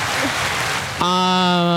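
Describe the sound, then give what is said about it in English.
A dense wash of audience clapping fills about a second, moderately loud and steady, then cuts off as a sustained voiced tone takes over. “tell your people to stop clapping for us.”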